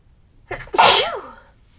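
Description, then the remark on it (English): A single loud sneeze: a short sharp intake of breath followed by an explosive burst that trails off into a falling, voiced tail, with quiet before and after. “So I'm just going to pause and take a moment for us to feel into that while I may or may not sneeze.”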